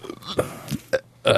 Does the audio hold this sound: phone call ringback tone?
no